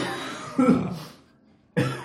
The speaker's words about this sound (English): He's coughing, guys. It's happening. It's real.